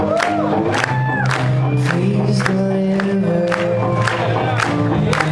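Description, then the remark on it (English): A live concert crowd at Rockettown in Nashville in 2012 cheers and roars loudly as a band opens a song with the Meow Mix jingle, pounding out a steady beat with voices singing along in the dense, continuous din. “That's like the best sounding live one I found, because I also found in 2012 at Rockettown in Nashville, they surprised the crowd by playing it and opening with the Meow Mix thing.”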